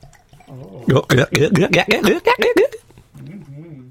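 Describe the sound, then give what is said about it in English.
Beer glugs out of a maxi bottle into a glass in a quick run of rhythmic, gurgling pulses lasting about two seconds, with a voice murmuring briefly before and after. “So, I'm going to pour this in here.”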